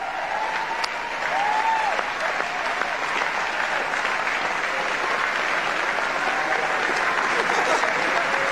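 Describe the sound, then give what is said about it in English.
A large crowd at CPAC breaks into sustained, thunderous applause as swimmer Riley Gaines is called up during a speech, a dense wash of clapping that holds steady and loud throughout, with faint voices and whistles mixed into the roar. “It was the largest applause I've ever heard.”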